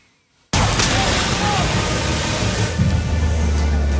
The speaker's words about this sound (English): That's what we're hearing right now, is that explosion. They've knocking out the power and the internet and everything in whatever radius that explosion can cover.